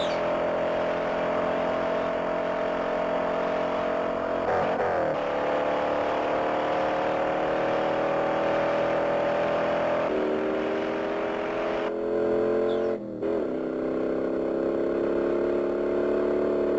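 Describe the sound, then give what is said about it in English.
A loud car engine revs and accelerates continuously, its pitch climbing and dropping back several times as it shifts gears, with no voices present. “Now we got guns. Yeah. Guns and cars.”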